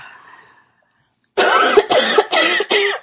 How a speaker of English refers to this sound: Yeah, I needed to cough. That's weird. Like, for every time we say room tone, you make noise. You can't get mad at me for coughing. I had a tickle.